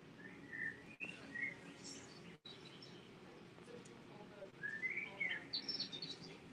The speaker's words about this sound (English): So I heard bird sounds.